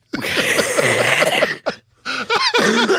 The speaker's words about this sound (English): Are you okay? Are you all right? No, make me cough.